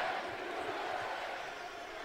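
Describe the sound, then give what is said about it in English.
A large crowd chants in unison, a loud, dense roar of many voices that fills the whole two seconds with a steady, rhythmic swell, like stadium fans chanting "USA." “Unironic USA chants.”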